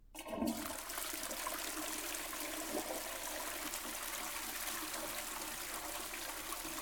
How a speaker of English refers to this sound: Okay, now I'm worried you really did flush it away, but not because it's good, but because it's a trailer park toilet, baby. They block real easily.